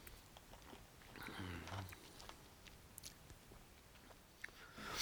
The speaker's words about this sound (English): and now I'm getting another sip off my Sunkist.